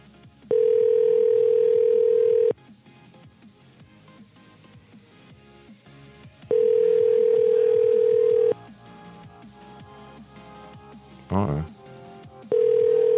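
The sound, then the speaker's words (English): An outgoing-call ringing tone: steady, fairly loud two-second tones repeating three times with long silent gaps, over faint background murmur and a brief clatter just before the last ring. “It's not fucking ringing now.”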